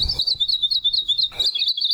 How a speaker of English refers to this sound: Hawaii Akepa are an endangered Hawaiian honey creeper that are found only on the Big Island. As honey creepers, they're descended from an original group of finches that found their way to Hawaii from Asia over 5 million years ago.